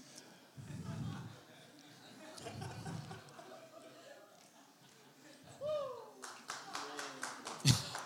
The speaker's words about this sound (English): Well, come on. Yeah, let's give God some praise. Hallelujah. Thank you, Father. Clap, shout it out.